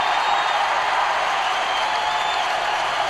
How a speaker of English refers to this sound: Not a dry eye in the house. And everyone standing and applauding. Everyone.